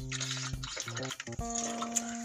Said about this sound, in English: I got to get some water for a sec. Excuse me, folks.